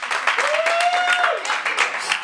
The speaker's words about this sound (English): How does he get a round of applause? I don't know.